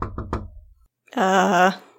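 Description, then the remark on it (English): Three quick, solid knocks on the door of a sleeping room in a steady rhythm, fairly loud, followed after a short pause by a person's voice speaking briefly. “I go over to the door.”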